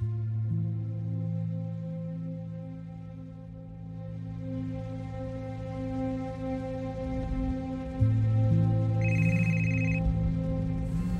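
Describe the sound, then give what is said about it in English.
A mobile phone on the passenger seat of a car rings with an electronic ringtone, its bright tones sounding steadily over a low, sustained humming drone, with no voices present. “The phone on the passenger seat rang for the 20th time.”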